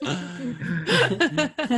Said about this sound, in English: This burp brought to you by Oreos and peanut butter.